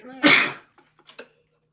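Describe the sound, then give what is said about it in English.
One loud sneeze bursts out sharply and fades within half a second, followed by a few faint, brief breathy sounds. “I'm gonna sneeze pretty soon.”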